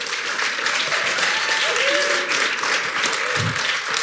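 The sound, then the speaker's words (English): An audience claps a guest steadily and fairly loudly for about four seconds, a dense, even wash of many hands, with a faint cheer or whoop rising briefly in the middle. “All right, can we give our guest a huge round of applause?”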